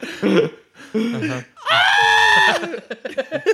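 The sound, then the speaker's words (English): A loud, sustained scream rings out for about a second, strained and high-pitched, with short bursts of talking just before and after it. “lets out a long, powerful scream.”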